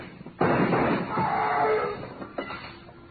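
A loud, sharp gunshot bangs out, followed by a couple of fainter impacts with a ringing tail. The shots are muffled, with a dull, splintering quality, fired through a door.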